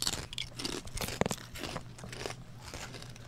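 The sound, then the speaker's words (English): A crisp crunch of biting into food, followed by several seconds of crackly, irregular chewing noises, with a low steady hum underneath. “Crunch, right? That's good, right? Tastes really good.”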